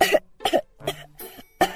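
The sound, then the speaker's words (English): A burst of five harsh coughs in quick, steady succession, fairly loud, with no talking in between. “The next time you have a cold, ask for a piece of chocolate. A natural chemical in the treat helps suppress coughs.”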